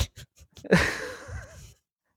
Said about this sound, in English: From the puppy pen.